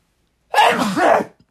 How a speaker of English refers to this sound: Sorry, I feel like I have a sneeze to hold back. Hold on.